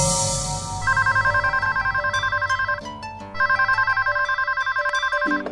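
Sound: telephone ringing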